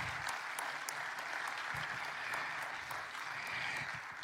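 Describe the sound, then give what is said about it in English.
A church audience at St. Paul applauds Judge Adams steadily for several seconds, a dense, sustained patter of many hands clapping at moderate volume, with no one speaking over it. “Come on, let's give Judge Adams another round of applause.”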